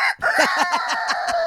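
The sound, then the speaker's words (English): A rooster crows loudly, a strained, rapidly pulsing call that holds steady for over a second with no one talking. “She just spontaneously grows a rooster's comb. I got a crow.”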